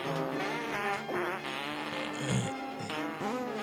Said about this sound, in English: Oh, is this a Christmas fart? Hold on. Oh no. Hold on. I'm going to play it now. No. Wait for it.